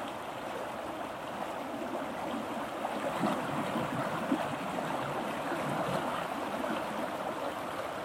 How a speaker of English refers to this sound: The music of the river. Water and rock. And gravity. And the power of the sun and the melting snow. The pulse of life. Feel it in the sound current. Feel the river in your blood.